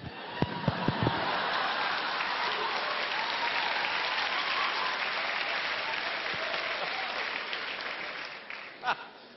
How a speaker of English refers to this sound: Oh, look at these young people clapping.